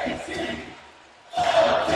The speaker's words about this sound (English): Crowd chanting.